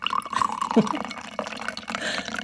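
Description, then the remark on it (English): Coffee pours steadily into a cup, a gurgling, splashing trickle whose pitch shifts as the cup fills, with faint murmuring in the background. “It's going to pour right in there, the sound.”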